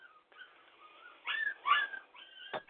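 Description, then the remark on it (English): A puppy whimpers and cries because it wants to get to its mother for milk, in a string of thin, high-pitched whines that rise and fall, ending with a sharper yelp. It's fairly quiet, with no one talking. “Why is it crying? Because it wants to get over and see its mom to get milk.”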